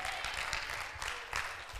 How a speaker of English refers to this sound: No, clap your hands now.